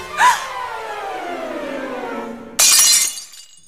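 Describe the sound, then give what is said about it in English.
A gliding tone slides steadily downward for a couple of seconds, then Cinderella's other glass slipper is broken, shattering in a sudden, loud, bright crash with tinkling fragments that quickly fade. “Yes, and oh gosh, she breaks the other glass slipper that Cinderella has.”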